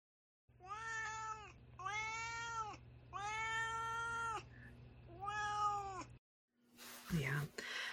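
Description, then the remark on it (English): A cat named Duarte meows four times in close succession, each call long and loud with a wavering pitch, followed by a brief, rougher vocal sound at the end. “Now it's time for Duarte's Corner, when my cat Duarte shares his opinions about the book.”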